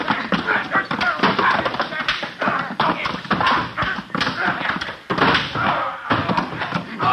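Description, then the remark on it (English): A hand-to-hand scuffle without sabers, as Roy Rogers and his partners fight gang members: a steady, dense flurry of thuds, slaps and knocking impacts with scraping and shuffling, mixed with strained vocal noises, fairly loud and continuous throughout. “Yeah, a hand-to-hand struggle without the benefit of sabers.”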